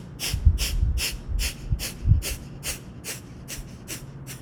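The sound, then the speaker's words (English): A rapid, steady series of about eleven sharp, forceful breaths blown out through the nose after a deep breath in, each a short hissy puff, with no talking. “Almost feels like you're, not like you're blowing your nose, but you're blowing air through the top of your nose and kind of whirling up.”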